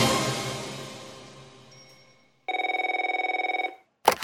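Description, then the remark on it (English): A telephone rings: a bright metallic ring fades away, then a second, rapidly trilling ring lasts about a second before a sharp click. No voices, fairly loud. “Hang up that phone and go down to reception and bring Ma'am back up here before she causes any more trouble.”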